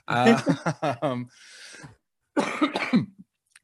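A harsh, raspy smoker's cough, not from COVID, several rough bursts in quick succession, followed by a wheezy breath and another round of throaty, phlegmy coughing, fairly loud.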